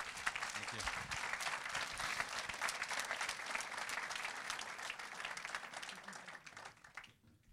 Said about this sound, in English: And if you love the Lord, can you give the Lord the biggest hand clap you can?